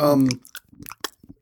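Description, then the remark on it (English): Close-up chewing of beef jerky, with wet, irregular mouth clicks and smacks right at the microphone, following a brief voiced hum at the start. “There's a lot of mouth noises going on right yeah, now. Yeah, the jerky was a bad idea.”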